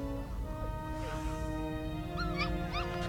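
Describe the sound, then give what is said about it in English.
Puppies on a floor whimper in a few short, high, wavering whines, clustered near the end over a steady background drone, moderately loud. “So there's all these puppies here on the floor.”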